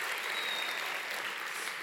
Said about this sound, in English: So let's get on with the stories. Wow, another cheer.